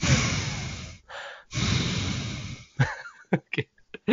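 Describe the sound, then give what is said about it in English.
Loud, heavy breathing close to a microphone: two long, rasping exhales with a softer breath between, then a few short, sharp huffs, a person mimicking someone panting into the mic. “stop breathing into the microphone. All I hear is...”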